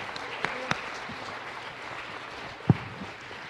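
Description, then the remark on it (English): An audience at a worship service applauding steadily for Jesus, a dense wash of many hands clapping, with a few sharper claps standing out near the start and one loud clap toward the end. “And would you one more time, you know, we've clapped because we're moved and we're thankful, but can we put our hands together one more time?”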